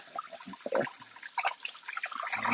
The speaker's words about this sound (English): Let me rinse this can, because we recycle here at Cooking in the Dark.